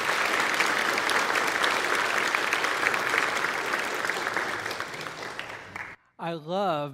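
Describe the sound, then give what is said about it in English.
A large audience applauds steadily for about six seconds for a woman celebrating her 90th birthday who is watching online, a dense wash of clapping that fades out, then a voice begins speaking right after. “If you would, give her an applause, please.”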